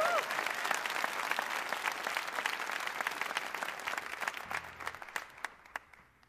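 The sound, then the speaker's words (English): A crowd at a Mountain Stage show claps steadily, a dense wash of applause that holds for several seconds and then thins out into scattered individual claps near the end. “You can clap. It's okay.”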